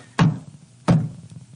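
A shoe bangs twice on a table, two loud, heavy thuds about a second apart, with a low resonant boom after each hit and no voices.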